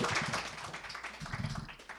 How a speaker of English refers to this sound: Keep it going for Jesse Elias. Clap your hands all the way to the mic for Mr. Elias.